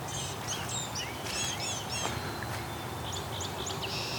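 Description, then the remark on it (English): Blue-gray gnatcatchers in a hydro corridor give thin, high, wheezy calls in quick clustered bursts over a steady outdoor hiss, several short phrases repeating without any talking. “These gnatcatchers are being loud. Let's go listen to them for a second.”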